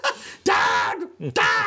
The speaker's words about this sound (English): Dog!